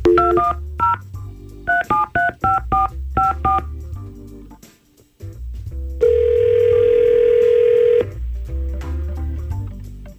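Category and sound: signal or alarm, telephone touch-tone dialing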